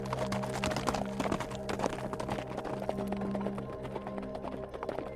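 animal, horse galloping hooves

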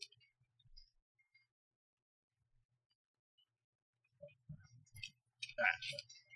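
household object, paper pages being shuffled

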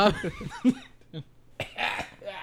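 human body sound, coughing

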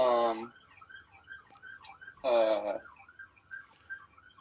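vehicle, ambulance siren passing

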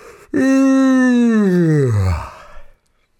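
human body sound, deliberate fake yawn

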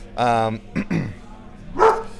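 animal, dog barking angrily

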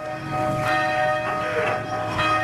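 signal or alarm, church bells ringing

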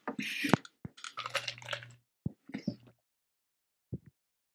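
food or drink, crunching ice cubes

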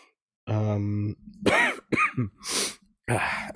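human body sound, coughing and throat clearing

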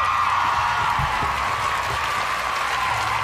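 sound effect, soundboard crowd cheering effect

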